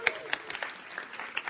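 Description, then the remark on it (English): An audience applauds, a fairly soft patter of many hands clapping at once in an irregular, steady spatter with a few sharper claps standing out. “Let's just applaud, because we like to applaud.”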